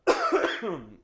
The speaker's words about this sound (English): Bless you. No, that was a cough. But thank you.